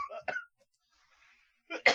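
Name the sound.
cough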